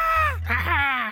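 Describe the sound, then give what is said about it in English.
A person lets out a short, strained goat-like bleat, two wavering, nasal cries run together, loud, with a low hum underneath. A human voice imitating a goat. “I need … to scream like a goat now.”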